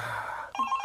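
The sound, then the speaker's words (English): A phone rings with a bright electronic tone, a steady warbling note that shifts pitch partway through the short burst, clear, with no voices. “What's that? Who could that be? Just get my phone.”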